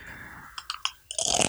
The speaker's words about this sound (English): I'm just enjoying these Doritos right now.